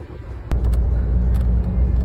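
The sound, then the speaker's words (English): A low, steady engine rumble from a doggy daycare bus on the move, carrying about ten dogs, swells louder after a moment and holds, with a few faint rattles and clicks above the drone. “there's 10 dogs on the bus?”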